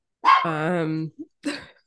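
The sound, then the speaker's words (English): A dog named Simba, being dog-sat, barks: one loud, drawn-out bark, a brief pause, then a second shorter bark, with no talking. “Sorry, I'm dog sitting.”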